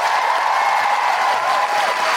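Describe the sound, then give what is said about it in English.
Steady, loud applause from a large audience at the State Theatre in Sydney, a last round for the guests: a dense wash of clapping hands that holds at full strength without a break, with no voices rising above it. “One last round of applause for all our incredible guests.”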